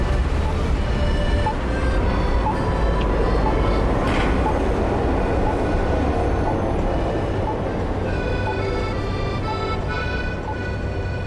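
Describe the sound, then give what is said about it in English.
A tram rolls along city tracks in Zagreb, a steady rumble with a humming motor whine and a brief rattling clack partway through, continuous from start to finish. “Maybe because of the trams which were once all blue.”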